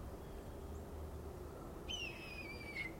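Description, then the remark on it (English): A songbird perched on a branch directly overhead, imitating a red-tailed hawk, gives one drawn-out, slightly falling screech midway through, moderately faint against a steady low outdoor rumble. “And he's wonderfully mimicking almost perfectly the sound of a red-tailed hawk.”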